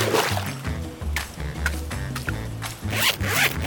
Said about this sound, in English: It's a retractable dog leash. I think someone might have already invented that. Yeah, but I put this cool grappling hook on the end of it. It's like my super power rope for catching bad guys. Hangs right here on my tool belt.